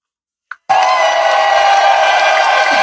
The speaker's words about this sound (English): Oh, wait a minute. Do I have my applause up? Let's see.